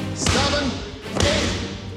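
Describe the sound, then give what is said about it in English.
A basketball is slammed hard against the ground twice, about a second apart, as part of a drill of 10 slams, each hit a loud, booming thud with a sharp smack and a brief ringing tail. “Take that, let's go slams. 10 slams, let's go.”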